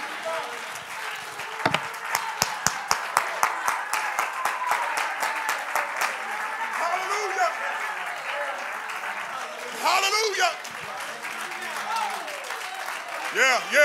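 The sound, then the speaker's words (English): An audience at a worship service claps their hands in a quick, steady rhythm of sharp, loud claps, then keeps applauding as voices call out and speak over the clapping. “You ought to clap your hands, lift your voice.”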